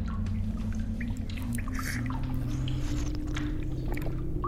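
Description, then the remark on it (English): Someone drinks water, with wet slurping and dripping sounds coming in small irregular bursts over a steady low rumble. “Oh, you gotta taste this water.”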